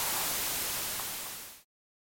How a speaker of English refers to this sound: Fair amount of static on that one. Yeah, a decent amount.